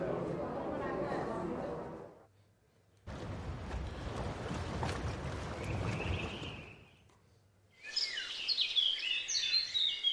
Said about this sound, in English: And a forest. Oh, definitely a forest.